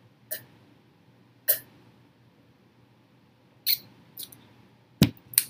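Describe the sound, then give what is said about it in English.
Someone drinking water: about six short, sharp gulps and swallow clicks spaced irregularly over a few seconds, with quiet pauses between them and no talking. “Hold on, I gotta drink a water.”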